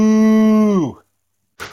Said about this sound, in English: Moo. That is clearly a Canadian cow.